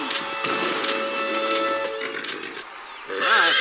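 A racehorse, Furious D, lets out a loud, shrill whinny near the end after winning a race, its wavering cry rising over a steady humming background that fills the first few seconds.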